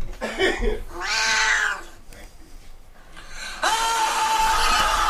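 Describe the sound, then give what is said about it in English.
A cat lets out two long, loud, wailing yowls, separated by a brief pause, the second cry stretching drawn-out to the end with a strained, caterwauling tone. “Oh, there's a third cat.”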